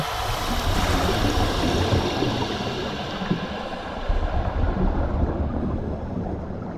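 A steady, dense rush of bubbling water as divers press a button to let air out of their BCD vests and sink beneath the surface into warm water, churning continuously for several seconds with no voices.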